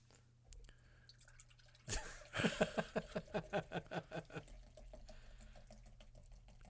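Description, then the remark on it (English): A Thin Mint drink is poured into glasses: a splashy start, then a quick run of about a dozen rhythmic glugs that speed up and fade into a soft trickle. “Just pissing on our glasses here.”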